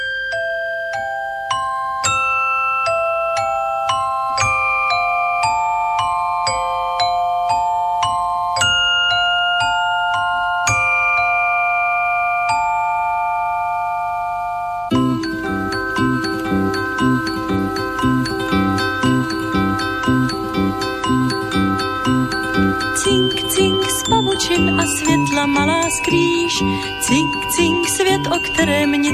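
Bright, tinkling chime notes ring out one after another in a gentle melody, then halfway through a fuller song bursts in with a steady beat, the chimes still sparkling on top.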